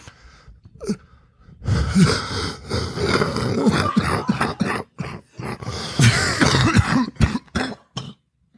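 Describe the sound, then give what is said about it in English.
A loud fit of repeated harsh coughing from a person with an upper respiratory infection and a high fever, bursts coming in quick clusters with brief gasping breaths and throat-clearing between them, going on for several seconds with no talking. “You have coughed the entire time. There's one more.”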